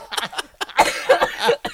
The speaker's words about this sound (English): I'm gonna choke because I'm so sick and coughing.